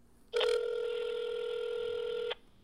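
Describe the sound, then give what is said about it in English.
A single ringback tone from an outgoing phone call: one steady, electronic buzz-tone that holds for about two seconds and then stops, with no talking. “So let's give him a call.”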